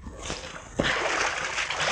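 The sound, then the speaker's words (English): Continuous sloshing and splashing of water as someone wades hip-deep out to a launch (boat) with a girl, with a sharper splash about midway followed by steady churning of water. “You're gonna have to wade out with her. Yeah, up to our hips.”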